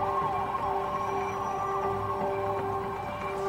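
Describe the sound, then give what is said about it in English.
A warning siren from a nuclear preparedness PSA, like a Midwest tornado drill alarm, holds a steady, loud tonal wail for the whole stretch, with layered harmonic tones and no voices. “Here's a little bit of the here is the nuclear preparedness PSA, which sounds like, if you're from the Midwest, a tornado drill.”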